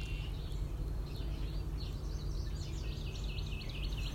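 Birds chirp and twitter steadily around a porch by the water with trees and tall grasses, over a low, constant outdoor rumble, their quick high calls growing busier partway through.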